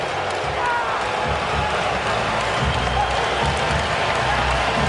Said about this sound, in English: A little lull, and then they all stood up and gave a routing, like a big standing ovation.